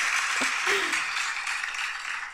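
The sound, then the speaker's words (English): A round of applause celebrating Disneyland finally reopening after over a year: dense, steady clapping from many hands forming a continuous crackling roar that holds at an even, moderately loud level for a couple of seconds, with no one speaking. “Yep, it deserves a round of applause.”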